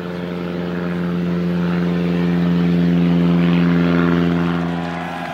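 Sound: airplane flying past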